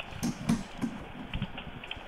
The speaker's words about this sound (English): We could hear you typing. We can't hear you talking.